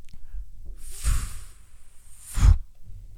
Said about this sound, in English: We should do the sound of that box opening, the die box. Like a board game box. It's you opening a board game box.